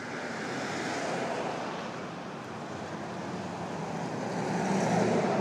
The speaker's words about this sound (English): Suddenly a lot of activity has arrived all at once here. Cars driving past, people walking past, bicyclist, Uber, and it's just pulled up.